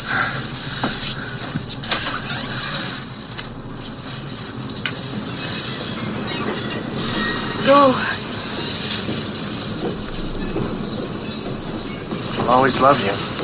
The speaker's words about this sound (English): The train's about to leave.